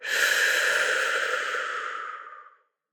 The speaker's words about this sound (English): Let's begin by imagining you have a straw in your mouth and take a deep breath in through your mouth. And then breathe out through your nose.